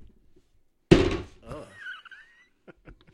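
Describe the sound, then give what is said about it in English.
A large die is rolled and lands on a table with one loud, heavy thunk, then tumbles and rattles briefly as it settles. Faint voices murmur quietly before and after. “I don't get access to much bigger dice, because that's a big die we've got there on the table.”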